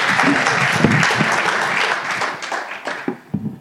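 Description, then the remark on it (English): An audience applauds two people in a dense, steady wash of many clapping hands that gradually thins out, ending with a few scattered claps and faint voices underneath. “So a big round of applause for these two.”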